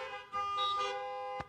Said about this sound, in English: Do we have any sports fans? Give me a honk if you're a sports fan. Any kind of sport.